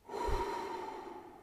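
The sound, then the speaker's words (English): A big, gasping breath drawn in sharply by a female swimmer surfacing from the water after blowing out the last of the air from her lungs, held long and loud, with a rough, airy rasp that trails off after a second or so. No talking. “where she blew out the last of the air from her lungs and took in a great gasping gallon.”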